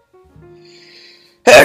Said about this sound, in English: I gotta sneeze again.